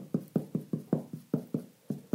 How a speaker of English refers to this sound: I'm just inside the bedroom, and going up here above the door, I'm going to look for a wall stud. First, I'm going to do it the old-fashioned way by just tapping. That kind of sounds hollow.